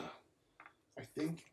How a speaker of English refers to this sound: So Midnight rolls up onto his elbow again and coughs and clears his throat.